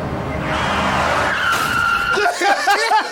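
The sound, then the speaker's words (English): Car tires screech loudly in a long, high-pitched skid over an engine rumble, the squeal wavering and breaking up as the vehicle slides to a stop. “And also, I love the screeching of the tires that roll to a stop.”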